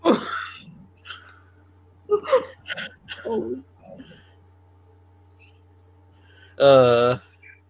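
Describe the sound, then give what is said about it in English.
A few short, breathy bursts like fake coughs, voiced fairly loud, followed by a brief drawn-out vocal sound. A person imitates coughing rather than genuinely coughing, mocking the film Green Book during talk of Oscar screenplay winners. “Green Book, cough, cough.”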